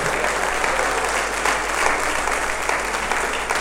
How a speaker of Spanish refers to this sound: Vamos, si le vas a dar un aplauso al Señor, dáselo fuerte.